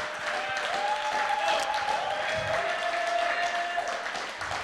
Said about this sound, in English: Somebody clap a little bit. Come on, I got about another hour and a half. Come on, clap a little bit.